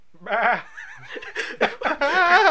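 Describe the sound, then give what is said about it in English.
A person imitates a screaming goat with wavering, bleating vocal cries, a sustained wail followed by choppy bursts and a final loud quavering scream, fairly loud. “He grabs the sawed-off shotgun, shoots the goat man. Right in the face. Screams in the air with the goat noise.”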